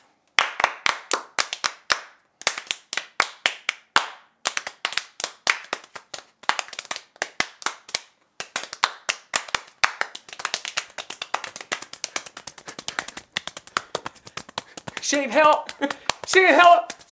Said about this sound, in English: play the applause track. Play the applause jingle. Here we have a clap for you because you did so well.